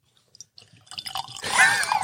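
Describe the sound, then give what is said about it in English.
Bourbon being poured into a glass: a few faint clinks, then a steady splashing trickle that swells and keeps running to the end, with no voices. “We have a sound bite of the pour.”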